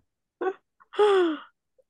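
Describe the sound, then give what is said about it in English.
A voice imitates an audience gasp in a movie theater: a short sharp intake followed by a longer, drawn-out breathy vocal gasp with a falling pitch, moderately loud, no other talk. “I do remember this being like a gasp in the theater.”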